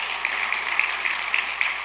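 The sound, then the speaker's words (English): An audience applauds the preacher's 25th wedding anniversary, a dense wash of many hands clapping at an even, fairly loud level throughout, with no voices rising above it. “25 years ago, you can applaud.”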